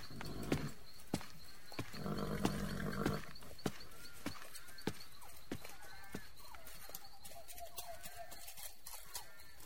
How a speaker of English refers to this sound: Now come along, horse. We have a mite ways to go.